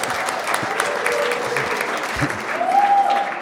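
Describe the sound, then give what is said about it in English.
A crowd applauds a 93-year-old World War II veteran and Duke alumnus, a dense, even wash of clapping that holds its level throughout, with a faint whoop or cheer rising near the end. “You guys are going to applaud every clause in this sentence.”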